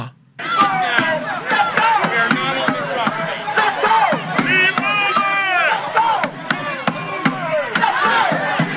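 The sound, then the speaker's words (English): A large crowd screams and yells nonstop for about nine seconds, many high, wavering voices overlapping loudly, punctuated by sharp percussive cracks scattered throughout. “That one is insane with the screaming.”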